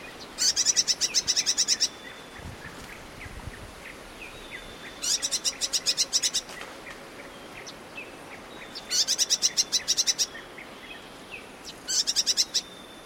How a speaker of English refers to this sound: And last but not least, we have the calls of an eastern double-collared sunbird. This bird was recorded while it foraged among acanthus flowers in Kenya.